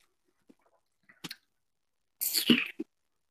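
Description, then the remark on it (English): A few faint wet mouth clicks, then a short slurping sip of a drink being tasted, with the liquid swirled around the tongue, ending in a soft smack. No one speaks. “Just a little sip, swirl it around the tongue, and see what you think.”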